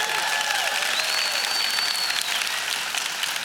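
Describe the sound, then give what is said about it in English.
Steady audience applause for the speaker's wife and their 25 years of marriage, a dense wash of many hands clapping at a constant loudness for the full few seconds, with no voices standing out above it. “She deserves most of those applause because I'm hard to live with.”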